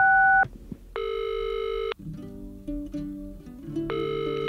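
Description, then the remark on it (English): Electronic telephone tones of a call being placed play in short steady bursts, alternating between high bright beeps and lower pitched tones, loud with no voices. “Let's call her now on the funny phone. Beep, beep, beep.”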